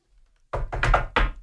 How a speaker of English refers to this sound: Better knock on wood.